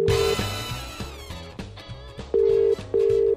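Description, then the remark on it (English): A phone rings down the line in a British-style double burst, a steady electronic tone pulsing twice near the end, loud and clear over a backdrop of music. “I've said this once, I'll say it 100 times, whenever you ring a wrong number, somebody always answers the phone.”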